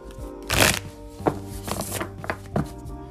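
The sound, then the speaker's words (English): A deck of cards being shuffled before reading a message of guidance, with a long brisk riffle followed by several shorter flicks and taps, fairly clear over a soft, steady musical hum. “So, today's message of guidance, I only got one for you, so I'm just going to shuffle the cards and read it.”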